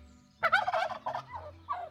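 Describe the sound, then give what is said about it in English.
A wild turkey tom gobbles in a rapid, warbling burst during the mating season, a loud rattling call that trails off into a few shorter gobbling notes, heard clearly with no talking over it. “This is when the gobbling sounds are at their peak, and toms are at their most vulnerable.”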